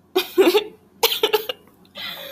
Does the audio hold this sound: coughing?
yes